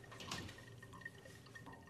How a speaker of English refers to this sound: the toilet's overflowing. Not again. Can you come and fix it? Someone is doing this on purpose.